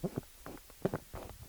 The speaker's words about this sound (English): status update on me sweating to death in my wife's car. My clothes very wet. It looks like I jumped into a swimming pool. My arms are glistening. That's nice. The center console is very slick. It almost made a fart noise.